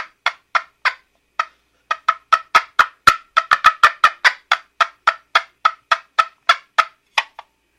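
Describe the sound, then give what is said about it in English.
A turkey hen cutting: a fast, excited run of sharp clucks and yelps, about two dozen in close succession, loud, with no talking over them. “That little rapid clucking, yelping type thing.”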